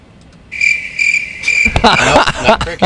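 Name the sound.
crickets chirping sound effect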